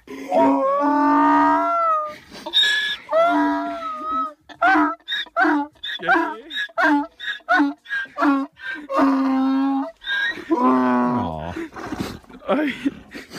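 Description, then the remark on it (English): A donkey named Baldo brays excitedly on being reunited with the farmer it was separated from, a long run of loud, rasping calls that rise and fall in pitch, with brief pauses between bursts. “And just how happy they both are to see each other, especially the donkey.”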